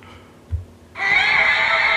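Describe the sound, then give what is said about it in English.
A brief low thump, then a loud, screeching monster roar bursts in and holds steady to the end, harsh and high-pitched with a shrill, whinny-like edge. “That is the roar.”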